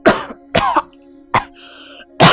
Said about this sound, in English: Ryla took an experimental sip and coughed.